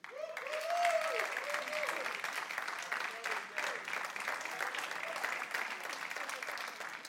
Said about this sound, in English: When I said happy Mother's Day, every husband, every guy ought to be standing on their feet, clapping, cheering, and saying, praise God. I'm going to say it one more time. Happy Mother's Day.